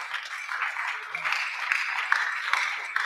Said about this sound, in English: The way you are clapping your hands, I'm not sure you're in the house of God today. Are you in the house of God at all?